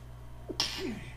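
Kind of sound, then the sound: human body sound, sneeze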